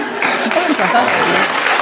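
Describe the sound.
An audience claps in a dense, steady wash of applause that lasts the whole moment, fairly loud and unbroken, with voices mixed in underneath the clapping.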